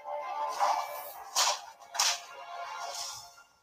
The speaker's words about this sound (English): So you use a hologram whip to slap around, and then at the end you do a cat hiss, like.